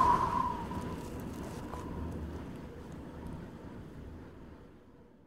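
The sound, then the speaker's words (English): A soft breeze rushes steadily, with a faint, thin whistle at the start that quickly fades, leaving a low, gently fading airy rumble. No voices. “A breeze creates the faintest whistle, as if it were calling you to return.”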